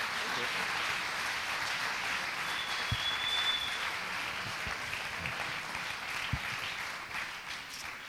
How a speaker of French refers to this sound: Clap for Job. Applaudissez pour Job.